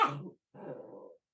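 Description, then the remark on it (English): A dog makes two vocal sounds: a short, sharp bark-like burst, then after a brief pause a longer, lower whimpering groan. No one speaks. “The dog's like, I don't like this question.”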